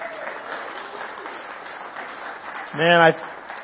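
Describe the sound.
A crowd at a Mother's Day church service applauds a family with steady, dense clapping that holds at an even level throughout, and near the end a single voice rises briefly above the applause in a loud call or cheer.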